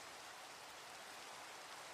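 Steady, continuous rainfall with a dense hiss of drops pattering on a surface, no voices, holding an even level throughout.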